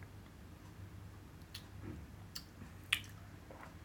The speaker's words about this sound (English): Let's take a sip. Okay. 3, 2, 1, go.